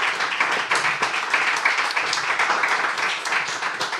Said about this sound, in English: Guys, let's give them a round of applause.